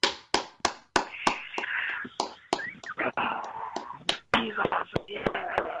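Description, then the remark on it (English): A small round of applause for a performer just introduced: sharp, scattered claps at an uneven pace rather than a dense roar, with hushed murmuring voices and whispery noise filling the gaps between them. “That round of applause after that, man.”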